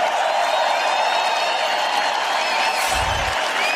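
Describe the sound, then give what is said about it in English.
A large arena crowd applauds and cheers Alexander Volkanovski and Brian Ortega after a featherweight title fight, in a steady, dense roar that stays loud throughout, with a brief low thump near the end and no clear talking. “Crowd, give it up for these guys for one of the best featherweight title fights we've ever seen.”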